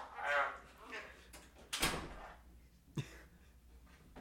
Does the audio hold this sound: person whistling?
no